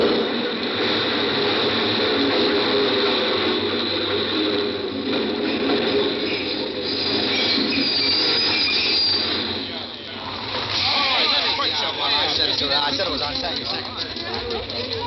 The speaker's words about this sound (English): I made myself draw back. But what I really wanted to do was to throw myself in front of that train. The lights on the shining rails hypnotized me like the gleaming eyes of a snake.